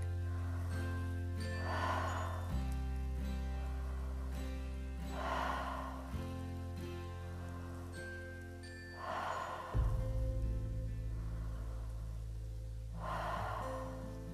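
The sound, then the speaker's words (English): Slow, deep breaths in and out, roughly four unhurried cycles, clearly audible over a soft, sustained musical drone that shifts chords underneath. “Breathing.”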